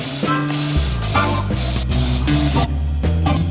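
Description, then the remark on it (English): A loud aerosol can of insecticide sprays steadily for several seconds at a cockroach inside a room, with low humming tones stepping between pitches underneath. “insecticide spray”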